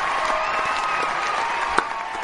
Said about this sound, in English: We got some... canned applause for you, Mark. You can't hear it. But keep that rolling, JT, so you can hear it. We want him to feel the love here.